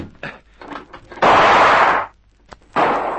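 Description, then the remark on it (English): A loud gunshot that comes through a window bursts out and rings for nearly a second, followed by a brief faint crack and then a second heavy blast, with softer scuffling noises before the first shot. “Keep well away from the window, Susanna. That shot came through.”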